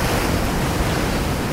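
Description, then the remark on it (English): Stormy sea waves surge and crash over a ship's deck while rounding Cape Horn, a loud, unbroken roar of churning water mixed with gusting wind, with no voices. “What if a wave crashes over the deck?”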